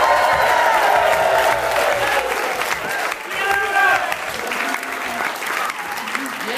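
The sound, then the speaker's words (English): A large live studio audience at a radio broadcast at Vanderbilt University applauds loudly and steadily with scattered cheers and whoops, the dense clapping filling the whole stretch without a break, enthusiastic. “What a fantastic crowd. You're beautiful.”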